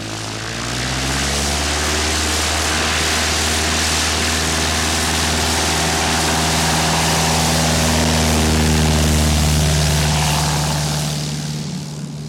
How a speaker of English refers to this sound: Ten minutes after 9 in the morning on August 16, 1986, a Cessna 206 took off from Meadows Field. The single-engine aircraft was recently acquired by the Kern County Sheriff's Office